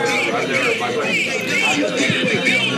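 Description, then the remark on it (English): Loud, rowdy chatter from a group of people at the table behind, many voices overlapping into a steady, lively hubbub with no pauses, filling the whole moment. “So it's getting kind of rowdy under the... The other table behind us. Has really ramped up.”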